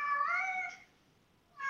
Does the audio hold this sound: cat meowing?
yes